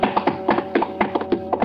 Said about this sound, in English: A minute later, the doc and Johann come stumbling up the stairs like a thundering herd.